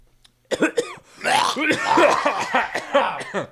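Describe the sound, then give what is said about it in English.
Fairly loud coughing: a couple of quick hacking coughs, a short pause, then a longer sputtering fit that carries on for a few seconds with a raspy, almost laughing quality. “It makes me cough.”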